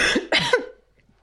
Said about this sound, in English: She coughed.